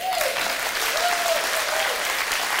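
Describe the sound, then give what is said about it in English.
Steady, dense applause from a church audience at the CBCB Playhouse fills the whole stretch, a continuous wash of many hands clapping at even loudness, with a faint whistle-like tone gliding in and out underneath. “Y'all can clap for him.”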